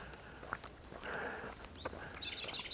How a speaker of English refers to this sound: So the birds I saw, they flew away. They were doves. Not much more exciting than crows, I guess.